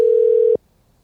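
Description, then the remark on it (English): A single steady telephone ringing tone from an unanswered phone call sounds loud and clear for about half a second, then cuts off abruptly into near silence. No voices are present. “Watch him not answer. Leave him a voicemail if he doesn't.”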